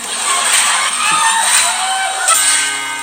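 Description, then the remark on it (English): An audience claps steadily and loudly for about three seconds, a dense wash of applause with scattered whoops and shouts mixed in, and no clear speech over it. “That clapping's messing my head up, man.”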